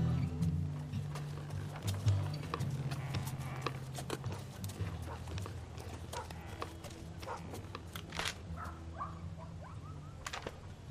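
Horses' hooves clip-clop in a steady, uneven patter of sharp knocks for the whole stretch, over a low droning hum in the background.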